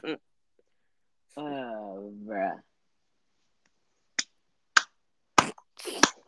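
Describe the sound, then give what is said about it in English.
A brief voiced sound from someone, a pause, then four sharp hand claps in a loose, slightly uneven rhythm, crisp against otherwise quiet surroundings. “Now you're clapping.”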